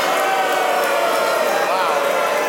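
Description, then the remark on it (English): A live audience boos in a steady, sustained roar of many voices, loud and continuous for the whole stretch, with no single speaker standing out. “I hope you're booing the fact that your national grocery chain is called Loblaw's.”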